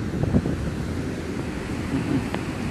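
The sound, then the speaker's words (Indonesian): A steady low roar of ocean waves at a quiet, nearly empty beach, broad and continuous, with gusty wind buffeting the microphone throughout and no voices. “Dengan mendengarkan suara ombak yang gemuruh banget.”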